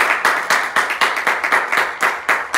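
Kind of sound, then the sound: crowd, applause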